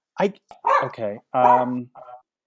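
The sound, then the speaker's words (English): A dog barks inside an apartment in a quick, uneven run of about five loud, tonal yaps over a couple of seconds, then falls quiet. “Okay, I just can't believe there's a dog in my apartment right now.”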